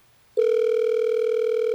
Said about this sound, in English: we're going to call him, and hopefully he picks up. Let us do the talking, kind of, while we get him on the phone first, so it's not a total ambush, okay?